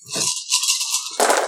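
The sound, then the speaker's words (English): A handful of dice, fifteen dice rolled for withering damage, rattles and clatters continuously for over a second, ending in a louder, denser burst as they tumble and settle. No one speaks. “So that'd be 15 dice of withering damage to him.”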